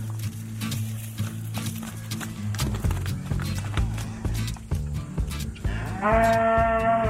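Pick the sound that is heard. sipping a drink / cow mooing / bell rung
cow mooing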